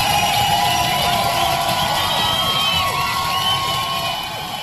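A large crowd cheers and shouts continuously, a dense roar of many voices with scattered whoops and high-pitched yells, holding steady before easing off slightly at the end.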